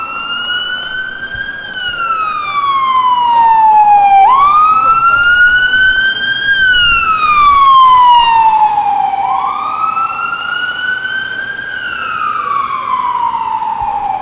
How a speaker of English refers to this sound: I'll just wait for the ambulance to go past.